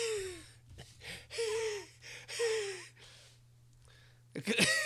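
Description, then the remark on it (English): A person imitates an old man's wheezy breathing: several raspy in-and-out breaths with whistling, squeaky wheezes, ending in a sharper gasp, over a faint steady low hum. “I was trying to do that like old man breathing that you hear sometimes.”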